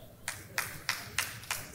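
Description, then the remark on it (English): Two people clapping in church in a steady rhythm, five sharp, bright claps about a third of a second apart, over a low, murmuring background noise. “I got two people to clap over there.”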